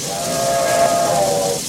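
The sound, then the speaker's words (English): A steam train whistle sounds over a broad, steady hiss of steam as the train pulls in, holding a sustained tone for over a second before fading out, loud. “Now pulling into Starbase Lionel.”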